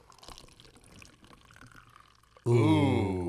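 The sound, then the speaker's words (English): A Jack Daniels fruit punch drink, just cracked open, trickles and splashes softly as it's poured into a cup for a couple of seconds, then a loud voice breaks in with an exclamation. “Go ahead, pour me a cup, sir.”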